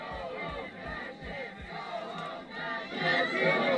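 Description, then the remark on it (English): A loud, dense crowd at a protest against LGBT content in schools shouts and cheers together as children stomp on pride flags, voices overlapping in a continuous roar, with rhythmic low thumps like stomping in the first seconds and the yelling swelling louder toward the end. “During the protests, kids from Muslim families fed up with gender indoctrination in their classrooms stomped on pride flags, garnering cheers from the crowd.”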